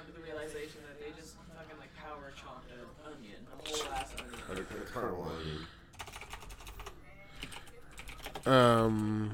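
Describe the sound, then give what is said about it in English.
Rapid clacky typing on a mechanical keyboard, a steady burst of sharp key clicks, mixed with voices talking over it and a loud vocal outburst at the end. “I'm not a fan of these mechanical keyboards.”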